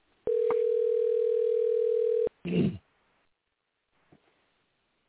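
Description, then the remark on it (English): A steady, unbroken telephone dial tone hums for about two seconds with a thin phone-line quality as a call is placed, then cuts off, followed by a brief muffled burst and near silence. “But I don't know that he hung up. Let's call him.”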